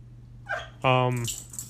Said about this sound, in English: Sorry, my dog that I'm dog sitting is whimpering his head off for some reason.